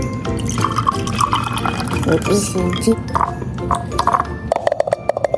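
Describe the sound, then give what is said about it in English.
Pineapple juice pours from a can in a steady trickling stream with gurgling, rising tones, ending in a few quick drips and light clinks, with faint voices in the background. “I'm assuming you want to drink the juice.”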